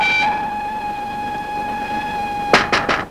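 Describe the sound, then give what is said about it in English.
A train whistle sounds one long, steady, loud blast, cutting off abruptly and followed by three quick, sharp knocks at a door. “And we get another blast of the train whistle and another knock at the door.”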